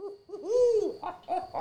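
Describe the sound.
A voice imitates an owl, giving a fairly loud series of hoots: a few short ones around a long, swooping hoo that rises and falls, with no talking.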